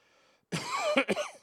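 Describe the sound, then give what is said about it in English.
A sneeze bursts out loudly after a brief near-silence, a harsh breathy blast followed by two quick, shorter sputters. No one speaks. “bless you. Thank you.”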